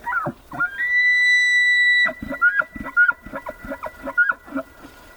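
A wild elk bugles in the Mountain West of the U.S.: a loud, rising, high-pitched whistle held for over a second, then a string of rhythmic, guttural grunts punctuated by short squealing notes.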